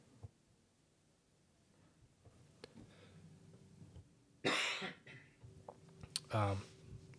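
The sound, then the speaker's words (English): Two harsh coughs from someone with a cold burst out a couple of seconds apart, with a throaty clearing in between, over a quiet background with faint rustles and clicks. “Sorry, I've got a cold. I got some coughing going on.”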